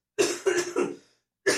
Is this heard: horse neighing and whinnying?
no